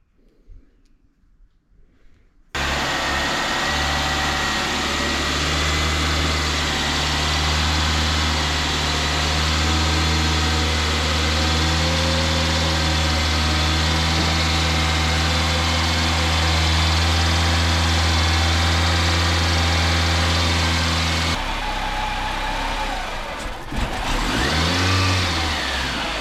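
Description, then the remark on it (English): After a brief silence, a car engine starts up loud, idling roughly with a steady low drone that shifts and wavers near the end; no one speaks. “It just has trouble idling, yeah.”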